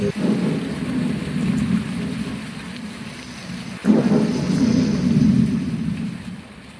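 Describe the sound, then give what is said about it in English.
Steady rain hisses over a deep, rolling rumble of thunder, with a fresh thunderclap swelling about halfway through and growling on. No voices, just the storm. “Let's get out of this storm, said Lana.”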